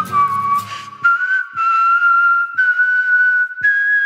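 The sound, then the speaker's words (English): A person whistles a tune, holding long sustained notes that glide gently upward in pitch across a few phrases, with brief breaths between them and no talking. “Are you whistling? Or are you just making the whistling face? I'm whistling.”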